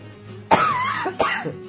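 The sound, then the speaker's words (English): Two harsh coughs, the first longer and rougher, the second following about half a second later, with no talking around them. “Pretend I had a cough button. What I'll do is I'll play a dolphin whenever I'm going to cough, and then you don't notice.”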